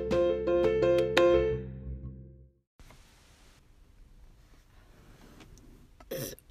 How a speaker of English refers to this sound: Oh, please don't burp again. It's sorry. Really small.